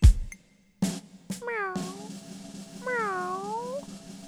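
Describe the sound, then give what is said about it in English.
A person imitates a cat with two drawn-out, wavering meows, each rising and falling in pitch, sung clear after a couple of short clicks and a brief pause. “Meow, meow, meow. I'm a singing cat.”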